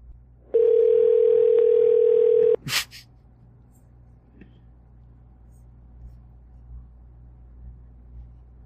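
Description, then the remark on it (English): A phone's ringback tone on an outgoing call sounds once, a steady two-second electronic purr, then cuts off with a sharp click, leaving only a low, rumbling background hum with no voices. “Here, wait. It's ringing.”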